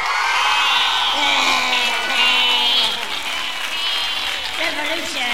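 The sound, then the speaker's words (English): A crowd cheers and whoops loudly and steadily for about five seconds, a dense roar of many voices with scattered higher shouts and some clapping mixed in. “Well, you may cheer, but first, my brothers, we have been infiltrated.”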